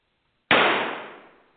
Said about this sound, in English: Another gunshot? Okay, now this is just overkill. Literally.